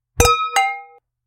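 wine glasses clinking

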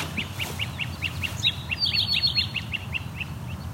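great crested flycatcher call

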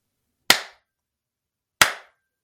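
hand claps

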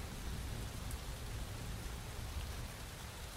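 rain falling

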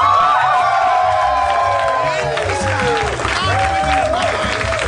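audience cheering and applause

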